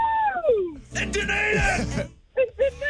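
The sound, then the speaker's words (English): A voice yells excitedly, starting with a high, falling cry and swelling into a loud, dense shout that lasts about a second, then ends with two short, sharp bursts. “The more I yell, the more excited it sounds.”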